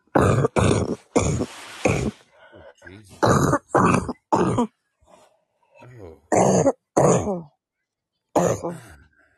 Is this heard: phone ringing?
no